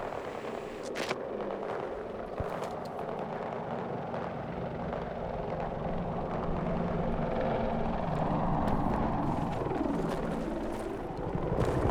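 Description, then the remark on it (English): A video game helicopter's rotor thrums steadily for the whole stretch, a dense chopping roar that swells slightly louder toward the end, with no one talking over it. “Kev in the helo?”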